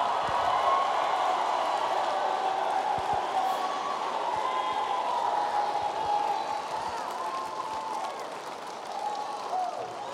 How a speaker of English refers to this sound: Do it one more time and clap and shout while you do it.